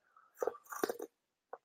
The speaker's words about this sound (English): I'm going to take another sip of my tea. It tasted so good. I can't not. So 1 second.